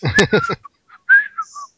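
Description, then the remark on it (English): A person whistles a short tune, as Peter Parker walks out whistling in a comic scene being described: a few breathy, voiced bursts, then a string of thin, clear notes sliding and hopping between pitches, with brief gaps between them. “As Peter walks out and you know, has a whistling.”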